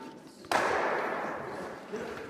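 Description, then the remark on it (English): A single sharp clack of one curling stone striking a red stone and knocking it out, followed by a sustained wash of broad noise like a crowd roaring. “Knocks the red stone out.”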